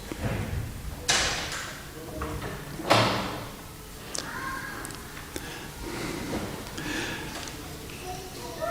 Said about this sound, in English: close those doors, please. Have a bit of tidiness in the place.